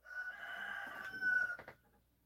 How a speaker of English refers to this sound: It's a nice rooster there in the background.